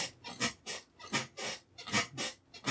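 A chair creaks and squeaks as it is moved, over and over in a quick, uneven rhythm, about eight rasping bursts in under three seconds, fairly quiet, with no voices.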